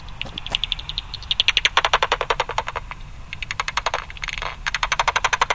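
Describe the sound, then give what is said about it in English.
Rapid trains of dry, crackling clicks from a bat detector tuned to a 45 common pipistrelle, pulsing in quick rhythmic bursts, with a brief run that speeds into a buzzy, raspberry-like rasp: the feeding buzz as the bat increases its pulse rate homing in on a small insect. No voices. “did you hear that little thing that looked like it sounded like you're blowing a raspberry? That's their feeding buzz.”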